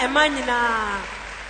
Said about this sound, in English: Clap your hands for the ladies.